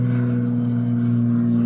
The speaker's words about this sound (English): I'm thinking about that airplane that's flying by. Yeah, because because the airplane's flying by,